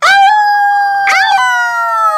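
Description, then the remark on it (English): A voice lets out a loud werewolf-style howl, breaking into a second rising howl midway that stretches out long and steady, with no talking around it. “The entire Senate had turned into werewolves.”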